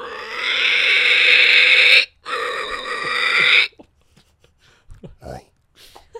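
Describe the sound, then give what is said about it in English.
A person mimics a pig with a loud, shrill, sustained squeal that briefly breaks in the middle, followed by a few short, quieter snorting grunts. “Start with the pig squeal.”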